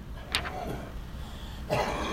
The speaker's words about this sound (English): Aside from the elderly man in the waiting room coughing through his mask, things went smoothly at first.